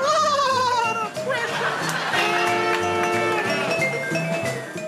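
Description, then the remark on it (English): A loud horse neigh with a shrill, wavering whinny that falls in pitch, then breaks into a series of shaky, quavering cries lasting several seconds. “That was the horse talking.”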